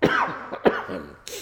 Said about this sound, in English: My throat is kind of scratchy. So, through the power of editing, which we don't do here, I'm gonna cough a little bit here and there. So I apologize in advance. Excuse me.